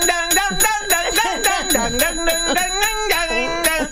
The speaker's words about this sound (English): Oh, God. This is going to get a lot of bells.